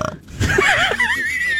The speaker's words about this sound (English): I think it's disgusting. Burping is one of my least favorite things in the world. I think it's gross. I think it's icky.